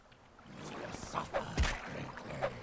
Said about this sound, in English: I hear water. I don't see water.